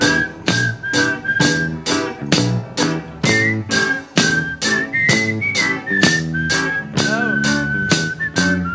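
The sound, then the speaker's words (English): A whistled melody of a song's verse tune, not its chorus, carries over a loud, steady band backing with a regular beat, the whistling bright and sustained with a wavering note near the end. “When they do remember, they whistle the verse tune and not the chorus.”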